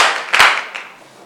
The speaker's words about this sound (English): Clap your hands for Jesus and you may be seated.